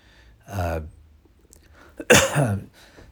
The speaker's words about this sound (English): sorry, I coughed. I don't know why I'm sorry, but you know, felt like it needed to be acknowledged.